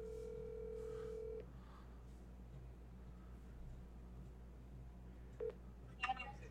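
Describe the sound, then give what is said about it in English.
A steady phone dial tone hums for about a second, followed by a pause and then a few short keypad beeps as a number is dialed to call the speaker's mother and wish her a happy birthday, over a low background hum. “There is one thing that we're going to do on mic, and that's call my mom and wish her a happy birthday. See if she actually answers the phone.”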